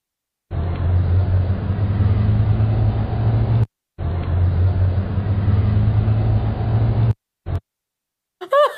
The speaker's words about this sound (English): Oh my gosh, so you all saw that, right? The car going by, there was a woman clinging onto the hood of a car because her Frenchie was abducted. Someone tried to steal her French bulldog.